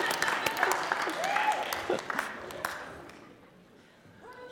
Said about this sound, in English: Yeah, let's have a round of applause.